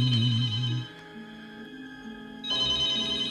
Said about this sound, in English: That noise really brings me back, just automatically. The phone?